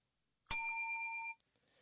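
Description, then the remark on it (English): A single bright bell ding strikes sharply and rings with clear, high metallic overtones for under a second before cutting off abruptly. No voices accompany it. “Ding. Ding.”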